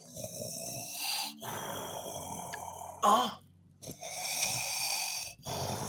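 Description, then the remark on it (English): A very large sleeping dragon in a cave snores in deep, rasping breaths, three long drawn-out cycles separated by brief pauses and a short snort, loud, with no talking. “All right, you're going into this cave and you hear something very large on the other side breathing.”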